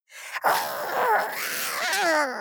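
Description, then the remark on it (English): A girl in plastic Halloween-styled armor imitates a vicious monster growl for a second time, a raspy, breathy snarl that holds for about two seconds and bends upward into a strained, whiny tone at the end. “She attempts the growl again.”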